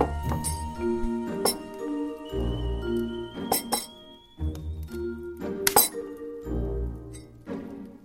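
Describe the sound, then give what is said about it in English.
Teacups and spoons clinking repeatedly in irregular bursts, bright glassy chinks and rings over low bumping and clattering, as tea is made in the Emporium with no talking. “Well, now that we've got our tea, should we settle down in our chairs?”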